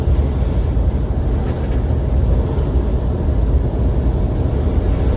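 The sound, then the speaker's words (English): A Detroit diesel semi truck engine idles with a loud, steady, low rumble that holds constant throughout, with no voices over it. “I like the sound of the Detroit engines.”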